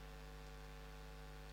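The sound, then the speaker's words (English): A steady, low electrical hum of big fans running at the two doors of a room, with a soft wash of airy noise on top, faint and unchanging throughout with no voices. “Probably primarily the big ones right now are those fans over there at the two doors.”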